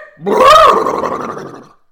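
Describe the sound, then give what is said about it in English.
A voice imitates the cartoon dog Scooby-Doo, a loud, warbling, throaty gargle of a bark-like utterance lasting under two seconds, rising sharply then trailing off into a ragged rumble. “Do you do that and I'll do the dog and let's see if we've got something.”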